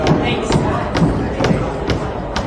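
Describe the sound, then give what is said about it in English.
Rapid, steady pounding on the glass doors of a college library during a pro-Palestinian rally, as people try to get in, about two hard blows per second, rising over a loud background of crowd noise and murmuring voices. “Pounding on the glass to get in.”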